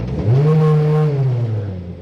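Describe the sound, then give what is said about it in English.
A Honda Civic touring race car engine, heard from inside the car during a lap, revs up sharply and holds a deafening, steady, droning roar for about two seconds, easing slightly at the end, with no voices. “That just gives you an idea of what it's like being in one of the Honda Civic cars. I mean, just deafening.”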